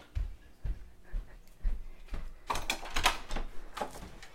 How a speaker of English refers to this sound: Now I have to even take you all to answer the door.